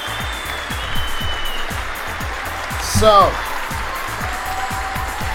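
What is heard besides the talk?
applause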